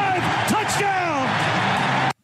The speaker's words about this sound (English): That right there, what you heard, is called cheering. Jets fans not get much opportunity to do that so far this season.